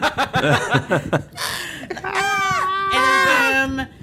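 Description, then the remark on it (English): After a moment of talk, a voice lets out two long, high, strained screams with falling pitch at their ends, imitating three swords shrieking as they are destroyed and die. “And also, these specific swords, they scream when they die.”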